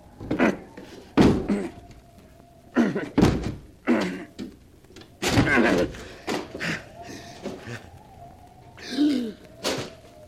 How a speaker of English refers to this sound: The door's locked. I'll have to break it down.